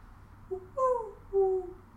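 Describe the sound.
A person imitates a mourning dove, cooing a short soft note followed by two longer, smooth, mournful hoots with a gentle downward slide. The voice is fairly loud and there is no other talk.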